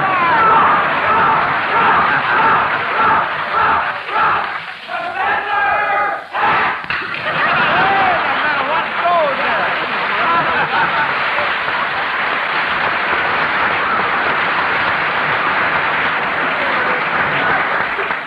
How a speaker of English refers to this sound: Like the professors have brought their own cheering section. Well, I'm glad you did, because it sounds very, very good.